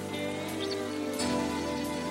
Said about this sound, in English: Let it rain.